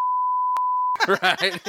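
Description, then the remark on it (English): A loud, steady censor bleep, one pure high-pitched tone held for about a second, cuts off abruptly as someone starts talking. “Beep, beep.”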